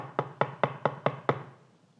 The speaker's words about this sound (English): So here comes Naaman knocking on the door.